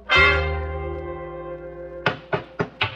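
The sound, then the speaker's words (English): A long, ringing harmonic tone slowly fades. Then four quick, sharp hammer blows land in an uneven rhythm as a porch is put back on a house, each a crisp knock. No voices are heard. “Well, then why are they still hammering?”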